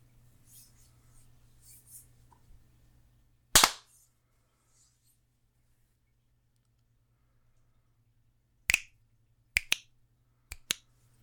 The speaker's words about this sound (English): I see sound waves. I see sound waves. Clap at 20.